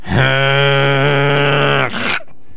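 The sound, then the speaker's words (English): A voice imitates a lawnmower with a loud, steady buzzing drone held for nearly two seconds, then breaks into a brief sputtering stutter before cutting off abruptly, as when the mower hits a tree stump. “Why don't you give us your best lawnmower noise?”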